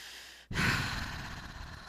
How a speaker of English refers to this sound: Why am I breathing hard?